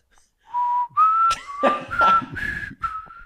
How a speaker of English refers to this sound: He whistles. Not the music. He whistles. But he can't whistle.